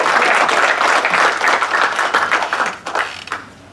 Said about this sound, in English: But please give a warm introduction, a warm applause for Shirin Haskel from the National Union.